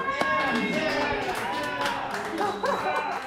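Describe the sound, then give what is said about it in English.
Scattered clapping from the staff of Sardine restaurant in Madison as the doors open on opening day rings out amid busy overlapping chatter and voices, loud, with sharp hand claps cutting through the crowd noise. “And when they opened the doors, you heard the staff start applauding.”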